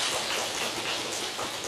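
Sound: applause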